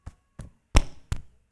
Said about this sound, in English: God came, knocked on the front door.